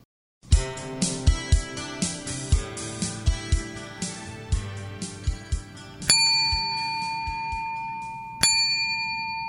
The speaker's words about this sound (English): Okay, Butch's bell. Now let's talk about this. What I did when Butch was a puppy is I hung a bell around the doorknob, okay? Now you can do this with any kind of bell that will ring, even one of those jingle strips, you know, like Christmas.